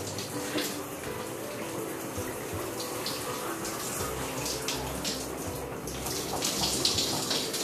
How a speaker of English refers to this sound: I'm just taking a shower.